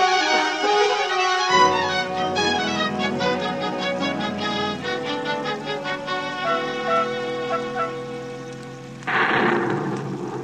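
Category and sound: nature, rainstorm with thunder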